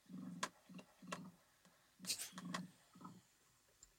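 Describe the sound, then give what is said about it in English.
An emu making a low, pulsing purr: about six throaty rumbling bursts in an uneven rhythm, moderately loud, with faint clicks between them and no talking. “Emu sound. That's what I'm going for.”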